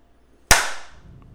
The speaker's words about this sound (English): Nicely done. That should do it. I don't think anybody could have done better. I mean, clapping is not something that requires a lot of skill.